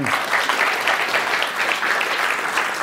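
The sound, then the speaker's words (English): An Intelligence Squared debate audience claps steadily throughout, a dense, even patter of many hands filling the whole stretch at a fairly loud level with no voices on top. “I will not interrupt an applause line for Intelligence Squared.”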